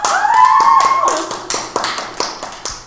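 A crowd bursts into clapping and cheering, rapid claps overlapping with a rising whoop at the start, then the applause thins into scattered, more distinct claps.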